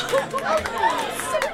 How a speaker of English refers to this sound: I'll have to get used to that sound. The world cheering for my beautiful fiancé.